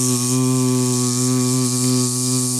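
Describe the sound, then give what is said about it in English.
A voice imitates the steady electrical buzz of a neon light, a continuous droning hum held evenly and fairly loud for nearly three seconds, with a faint hiss over it. “What's good about that is it's got the audible element of constant neon buzz.”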